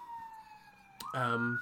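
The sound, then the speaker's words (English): A steady emergency vehicle siren wail holds one pitch, drifting slightly downward, clear, before a man's voice starts talking over it near the end. “Why is there always a fucking siren?”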